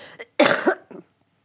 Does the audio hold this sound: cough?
yes